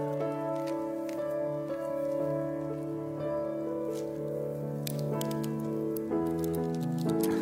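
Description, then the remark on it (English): Irregular, soft crackling of paper, scattered pops and rustles, heard during communion in a church service over steady, sustained instrumental music with no one speaking. “There's a Holy Spirit noise in person here of crackling paper, so I'm very happy about that.”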